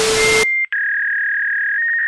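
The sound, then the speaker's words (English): A fax machine tone: a harsh burst of static with a steady pitch, a brief gap, then a loud, high, unbroken whine that holds to the end with a slight buzz. “Have you tried to make phone calls and always got that fax tone?”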